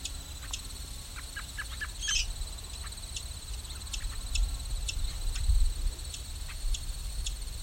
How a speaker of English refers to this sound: Field sparrow's ticking.